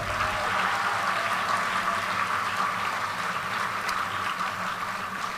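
An audience claps in a steady, dense round of applause that holds at an even loudness for several seconds, a broad wash of overlapping hand claps with no voices over it.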